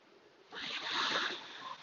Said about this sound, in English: Well, it's time for a swim. I'm at North Bondi. You can hear little waves lapping on the shore, but apart from that, it's absolutely Bondi Lake.